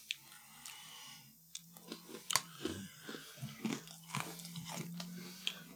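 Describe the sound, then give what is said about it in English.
Loud crunching of a crisp snack being bitten and chewed, with sharp cracks repeating irregularly over several seconds and no talking. “I can't keep biting this.”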